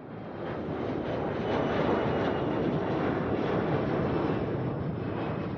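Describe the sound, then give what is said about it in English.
A steady, droning airplane engine roar fills the whole stretch, loud and unbroken, swelling slightly partway through, with no voices over it. “I ended up getting on the plane on my own and coming home that time.”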